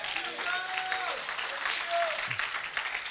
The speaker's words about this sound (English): Come on, somebody, give the Lord a great clap offering, amen.